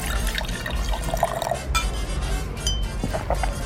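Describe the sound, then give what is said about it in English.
Liquid pours steadily into glasses with light clinks of glassware, a couple of drinks being poured in a continuous splashing fill over a dense, busy background. “Pour me a couple specials.”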